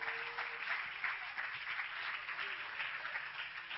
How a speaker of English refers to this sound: If you're determined, clap your hands to the Lord right now.